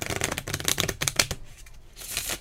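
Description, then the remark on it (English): A What the Heck deck of cards being shuffled: a quick burst of crisp, rapid flutters and clicks, a brief pause, then a softer riffling rush at the end. No voices. “That's the What the Heck deck.”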